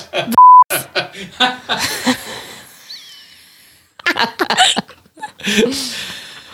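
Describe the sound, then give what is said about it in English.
Two short, loud censor bleeps cut in over a spoken word near the start, a steady pure tone amid bursts of laughter and chatter from several voices, followed by a brief lull and more laughing. “I'm gonna go back and bleep that word out just to make it sound like it was worse than it was.”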